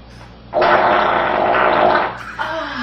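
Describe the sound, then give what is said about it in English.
A loud, raspy fart rips for about a second and a half, sustained, then cuts off as a short voiced sound follows. “You want to feel the hot air of my J-Mac, fart?”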